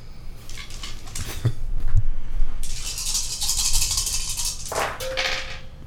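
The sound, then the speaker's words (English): Dice rolled for a deception check rattle and clatter across a hard surface in a steady, jumbled stream of small clicks, with a few sharper knocks mixed in. No one speaks. “So just to tell you a little bit about him while you're counting your dice.”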